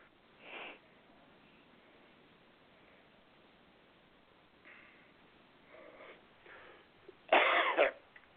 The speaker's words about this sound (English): Just heard her cough.